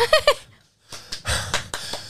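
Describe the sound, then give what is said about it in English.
Heavy, breathy panting after a big climactic stage performance: a few short voiced huffs, a brief pause, then several loud rasping inhales and exhales in uneven succession. “It's always that heavy breathing after just a big climactic.”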